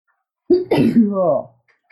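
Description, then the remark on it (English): One loud sneeze: a sharp intake burst followed by a drawn-out voiced release that trails off, with silence around it. “Bless you, Corona.”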